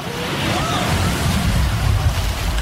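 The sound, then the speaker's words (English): A heavy rush of churning water roars steadily with a deep low rumble as a big ocean wave surges against a boat's hull, loud for a couple of seconds. “Brace yourself! Big wave coming through!”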